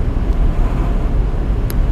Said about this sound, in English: So much air leaking into the window over here.